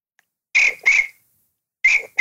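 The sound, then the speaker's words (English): A voice mimics chirping crickets with shrill, buzzy chirps in two pairs separated by a short silence. It is fairly loud, with no talking. “Yeah, those crickets are the sound of what's going on in your head because you know your ass ain't do shit.”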